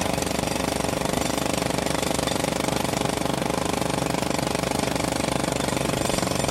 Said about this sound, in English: Wait. What? What were you saying? There was a jackhammer going on. I couldn't hear you.